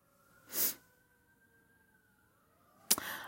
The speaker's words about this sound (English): so there's a lot of sirens. I don't know if you guys can hear that.